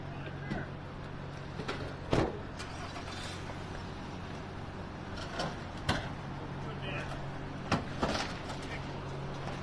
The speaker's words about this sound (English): Back, we got the tow truck.